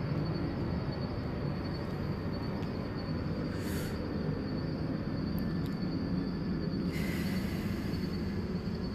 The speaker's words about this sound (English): I'm gonna let this plane pass because I don't know if I'm pretty sure that's gonna interrupt my talking.